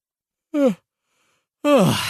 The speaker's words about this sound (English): Who's yawning? Hands up.